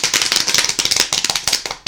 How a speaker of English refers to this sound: Now we're going to introduce our wacky sport of the week. Drum roll, please.